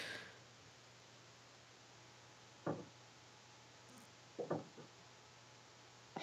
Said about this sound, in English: Their door must be warped like ours. Mm-hmm. We're listening to our neighbors trying to close the door, and I think the door on the cabin's warped. And it, when you try to latch it, you have to, like, slam it real hard to get to the latch